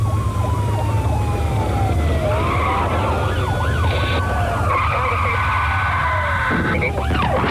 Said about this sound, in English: He's crashed at Junction 23. Very, very much pre-ABS brakes, wasn't it, this era? Very much so, very much so.